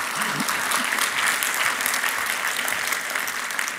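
Sustained audience applause, a dense wash of many hands clapping at a steady, fairly loud level throughout, with a faint voice briefly audible early on.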